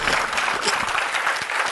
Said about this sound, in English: Somebody need to clap like you mean it.